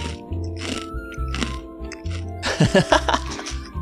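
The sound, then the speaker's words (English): Close-up crunching of spicy fish crackers eaten as a snack, several loud, crisp bites and chews in an uneven rhythm right at the microphone, with a low hum underneath and a brief murmur of voices. “Yeah, let me try one of these fish crackers.”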